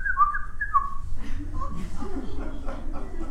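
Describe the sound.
A person whistles a few quick, bright, chirpy notes imitating a little bird, followed by soft voice-like murmuring over a low background rumble.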